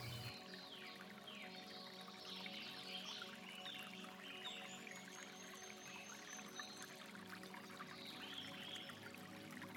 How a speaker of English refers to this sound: The path crosses a small stream. You hesitate for a few moments to listen to the sound of the water.